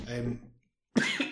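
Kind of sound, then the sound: human body sound, cough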